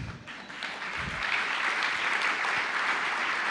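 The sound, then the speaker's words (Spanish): A crowd applauds steadily, a dense wash of many hands clapping at once that holds at a fairly loud, even level from start to finish, with no voices standing out. “Gracias por tu aplauso.”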